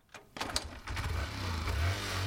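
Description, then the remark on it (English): A shared motorbike that midwives use to take women to clinics in emergencies cranks with a few sharp mechanical clicks, then catches and settles into a steady, rumbling idle that grows slightly louder. “By providing a shared motorbike for the midwives to transport women to clinics in emergencies”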